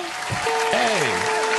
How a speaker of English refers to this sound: Give me a hand clap for them. The Las Vegas Raiders. Our Las Vegas Raiders. Where's my hand clap? Give me a hand clap. I don't know where it is. Oh, there it is.